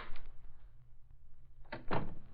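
A door opens: a short clunk at first, a quiet pause, then a louder rattling, scraping burst as it swings open near the end. No one speaks.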